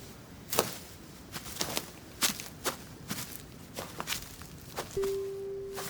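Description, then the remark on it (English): Footsteps of a family walking into a forest at a steady, unhurried pace, about a dozen soft crunching steps, then a sustained low tone rises in at the end. “They smile at each other and they walk into the unknown.”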